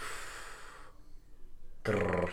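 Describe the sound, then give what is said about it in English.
A person tries to growl: a raspy, breathy rumble, a short pause, then a brief, loud, throaty vocal growl. No words are spoken. “try growling once.”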